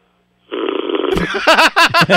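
A man snores loudly: a long, raspy rumbling breath followed by several short, pulsing snorts in quick succession.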